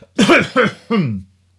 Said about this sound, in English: I'm going to have a hot cough now. You remember, I turn aside and I have a hacking cough.